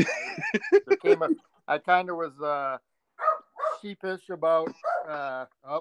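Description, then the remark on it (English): A dog barks and yips in a run of short bursts, some drawn out into whiny tones, pausing briefly before another flurry of barking. “You may get interrupted by my dog once in a while.”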